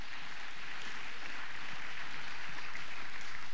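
An audience at a TWBC Christmas Eve service claps together in steady, sustained applause as a hand clap of praise to God, a dense crackle of many hands with no gaps. The sound holds at an even loudness for the whole stretch, with no voices on top.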